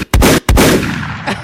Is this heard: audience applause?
no